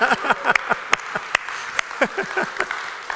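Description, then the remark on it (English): Scattered, uneven clapping from a small crowd of motorcycle riders, a handful of sharp claps spread over a few seconds, with voices chattering and calling out underneath. “All the motorcycle riders are clapping.”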